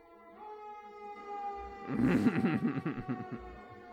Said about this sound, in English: I swear they brought in a second siren just to piss me off. Okay, sorry about that. I don't know. An ambulance just went by with its lights and sirens on, followed by a fire truck with its lights and sirens on, with Santa riding in the back.